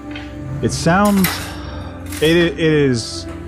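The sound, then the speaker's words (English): Dishes and cutlery clink and clatter in a few sharp bursts against a busy background of voices, fairly loud, like plates being set down on tables during a dinner rush. “And so you do, and so the dinner rush comes and goes, and it is the sound of laughter and joy and conversations and murmuring and dishes moving and the sound of plates on tables and the running of the water and the scrubbing.”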